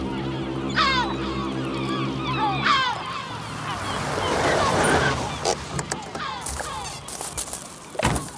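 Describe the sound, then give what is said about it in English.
Seagulls call out in several sharp, descending cries by the sea near an industrial shipyard, over a low, steady engine drone, which gives way to a broad wash of sea noise with a few scattered knocks. “Ah, there's nothing like the sound of the sea. However, gulls I could take or leave.”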